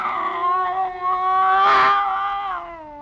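A scrawny cat named Clara yowls in one long, drawn-out cry that wavers in pitch and swells louder midway before tapering off, clear with no voices, its back arched and hair on end as it circles a bushmaster snake.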